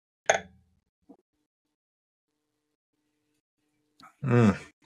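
A single bright clink of glasses in a toast rings out and quickly fades, followed by a faint tap and, after a pause, a short burst of a voice.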